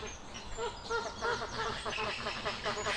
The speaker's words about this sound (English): And actually, it's flamingos, Chilean flamingos. There's a flock of about 82 of them there. And they have this beautiful sort of chorus of... It's almost like a carpet of very soothing goosey, ducky sounds.